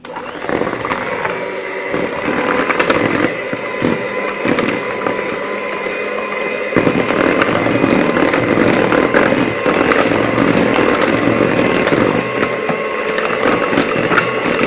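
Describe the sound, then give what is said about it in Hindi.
An electric beater whirs steadily for 10 to 20 seconds while mixing cake batter, a loud, continuous motorized buzz with a gritty, scraping texture and a slight shift in pitch partway through. No one speaks. “इसे हमने 10 से 20 सेकंड बीट किया।”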